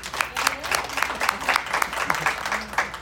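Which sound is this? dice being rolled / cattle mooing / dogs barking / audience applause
audience applause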